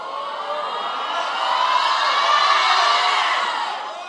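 An audience of many voices shouts together at the speaker, urging that he not end, in a continuous, dense roar that swells louder around the middle and then eases slightly toward the end, with no single voice standing out.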